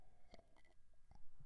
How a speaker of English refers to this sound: Another sip of tea. 1 second.